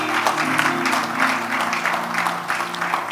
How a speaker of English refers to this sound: When you hear a title of a message, it's God giving you a message for your season. So you can clap and give God praise.